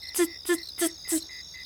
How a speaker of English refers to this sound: I think this sound might be a field cricket of some sort.